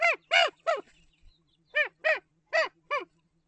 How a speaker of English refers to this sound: Remember that I said I call my local ravens sky apes? Well, maybe you'll understand why after hearing this next recording. Here's a raven in California making something like a chimpanzee or monkey sound.